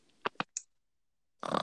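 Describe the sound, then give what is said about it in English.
A person gives two quick snorting bursts and a short sniff, falls silent, then lets out a rough, raspy rattle, a voice imitating a snore. “Oh, I can't do a snore. I can't tripping. Do a snore.”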